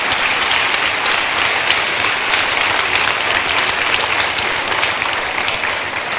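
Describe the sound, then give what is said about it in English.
An audience claps their hands after a prayer, in loud, sustained applause, a dense crackle of many overlapping claps holding steady for several seconds with no one speaking. “Clap your hands.”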